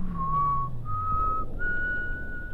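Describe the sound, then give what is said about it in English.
Someone whistles a short tune of three long, steady notes, each held and stepping to a new pitch, clear over a low background rumble. “In addition to the beads, they plan to eliminate whistling while I'm fucking reading.”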